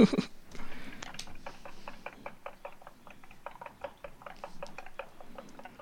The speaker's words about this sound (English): Now, like old Henry Casson said, when you think you've whisked these enough, whisk them some more.